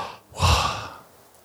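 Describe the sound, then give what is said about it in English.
A single slow, airy breath, swelling quickly and then trailing off softly over about a second, voiced deliberately like a whispered exhale with no words, imitating the breath understood as God's name, Yahweh (YHWH). “But many theologians would say it was the sound of breathing.”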